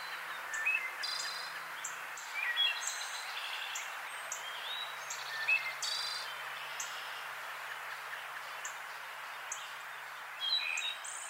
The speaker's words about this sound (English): And I actually have an example of that. Yes. It's a wood thrush.